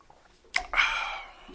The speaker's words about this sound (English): Let me get some of this lemon water real quick. Pardon me.